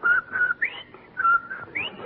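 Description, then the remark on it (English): A short, bright whistled melody, a catchy jingle phrase played twice with steady held notes and quick upward slides, fairly loud with no talking. “Well, confidentially, after Von Zell left here, I saw him out on the porch and he was whistling and singing. Like this.”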